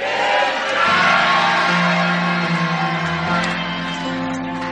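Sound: audience shouting and cheering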